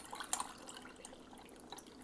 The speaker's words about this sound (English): Okay, so let me grab some ice. Sound effects. And let's pour us a glass of lemonade just to prove that we're out of bed.